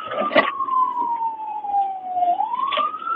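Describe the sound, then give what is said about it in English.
A police car siren wails steadily during a chase, its pitch sweeping slowly down and then rising again, loud, with brief bursts of road or engine noise underneath. “Cop can't keep up. He's in a fucking cop car.”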